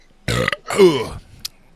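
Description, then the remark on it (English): A loud burp in two parts: a short croaky belch, then a longer, rumbling one that trails off, with no talking around it. “That burp should come with the eagle crack, because that's all claw there.”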